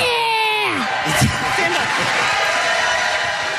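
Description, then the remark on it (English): A drawn-out yell from a kid going wild at an Eagles football game, slowed down as in slow-motion video, sweeps downward in pitch, then gives way to a loud, dense roar of stadium crowd noise that continues throughout, with occasional whoops rising above it. “You remember the slow motion video of the kid going absolutely crazy at the Eagles game?”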